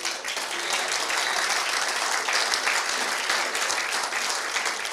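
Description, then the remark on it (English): A large church audience claps together in steady, sustained applause of praise to the Lord, a dense wash of many hands lasting several seconds at a fairly even loudness. “And today I just want you, how about another hand clap?”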